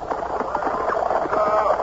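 Steady, rhythmic clip-clop of a fiery black horse's hooves pulling an open chaise at a brisk, reckless pace on a winding road in Connecticut toward dusk, with faint indistinct voices mixed in.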